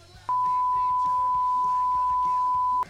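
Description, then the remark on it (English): A single loud censor beep, a steady mid-pitched pure tone holding for about two and a half seconds, with muffled conversation continuing faintly underneath it. “I'll beep this shit out.”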